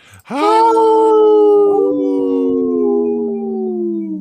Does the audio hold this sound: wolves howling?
yes